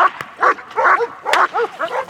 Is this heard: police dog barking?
yes